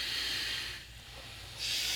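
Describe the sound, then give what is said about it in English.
A long, steady hissing breath drawn through the right nostril, with the left nostril closed, during a breathing practice, fades briefly in the middle, then a second airy hiss rises again. No one speaks; a low hum runs underneath throughout. “Now close your left nostril and start breathing through the right. Long and the hissing breath.”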